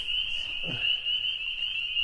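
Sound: spring peeper frogs calling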